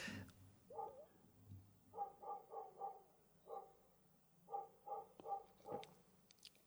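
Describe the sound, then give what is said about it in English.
A dog named Wolfie barks repeatedly in quick bursts of three or four, fairly loud, with short pauses between the volleys and no talking. “Why is Wolfie barking?”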